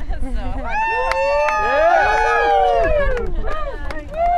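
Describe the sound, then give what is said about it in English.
A small crowd cheering and whooping together as a thru-hiker stands on the Katahdin sign, several voices rising and falling over one another in a loud burst of excitement that carries on for a few seconds. “A line formed for folks to take their picture in front of the Katahdin sign, and each time a thru-hiker stood on the sign, cheers erupted from the small crowd.”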